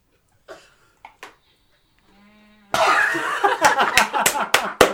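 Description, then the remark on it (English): A man who has passed out on a beanbag snores in a few short, rough snorts and a brief low drone, then a burst of loud, harsh rustling noise with sharp clicks takes over. “Snoring his tits off.”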